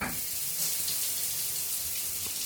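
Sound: shower water running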